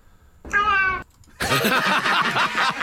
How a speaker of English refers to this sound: I don't know anymore if this is good, but it's a cat saying hello. Here it is.